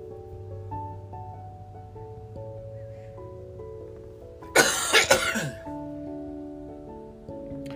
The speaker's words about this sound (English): I'm going to have to edit that out. I don't know where I'm starting to cough from